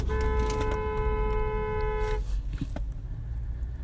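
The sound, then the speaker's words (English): A single sustained car horn honk blares for about two seconds, sounded by a driver at a woman driver who is treating a spot that is not a turnaround as one. It then cuts off, leaving the low rumble of an idling vehicle and road noise. “I just literally had to honk at a lady who doesn't recognize that this is not actually a turnaround.”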